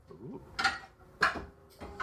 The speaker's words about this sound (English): Are you dropping pans? Yeah, I'm dropping pans too as I'm researching.